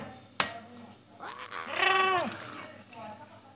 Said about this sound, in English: Give me a goat scream.